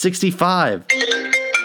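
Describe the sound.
A phone ringtone plays from a laptop, a bright electronic melody of steady tones. A voice is heard briefly at the start before the ringtone takes over.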